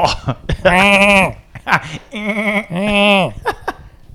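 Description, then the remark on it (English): A voice imitates a goat as an idea for a custom phone ringtone, letting out three loud, quavering bleats in quick succession, each a drawn-out, wavering cry with short breaks and some brief vocal sounds between them. “It would just be a goat.”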